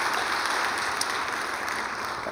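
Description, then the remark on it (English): An audience at High Point applauds the worship team during a morning service, a dense wash of many hands clapping at once, sustained and fairly loud throughout with no talking. “Why don't you give the worship team a round of applause for serving us this morning.”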